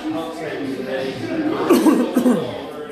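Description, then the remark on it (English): Two quick sneezes burst out one after the other, sharp and fairly loud, over a steady background of voices. “Bless you twice.”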